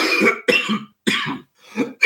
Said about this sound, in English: Actually, I have to cough.